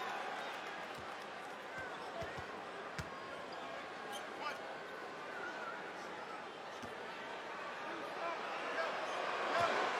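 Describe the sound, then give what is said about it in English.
A free throw bounces sharply off the rim and goes in during the third quarter of a Houston Rockets versus Toronto Raptors basketball game, cutting through steady arena crowd noise, with murmuring voices throughout and the crowd swelling louder toward the end. “One bounce, second one in the air, good for Grady.”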